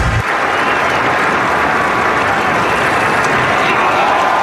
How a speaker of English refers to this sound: A round of applause for a true hero